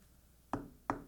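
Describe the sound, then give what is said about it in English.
A man knocks twice, firmly, on a wooden door that stands slightly ajar. The knocks are evenly spaced about a third of a second apart, each with a short resonant ring, clear against a quiet background with no voices. “He knocked on the door.”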